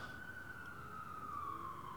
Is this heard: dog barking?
no